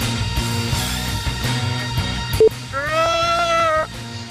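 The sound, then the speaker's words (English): A person imitates a goat, letting out one wavering, nasal bleat about a second long, fairly loud over a steady low background hum, with a short tonal blip just before. “I'm a goat.”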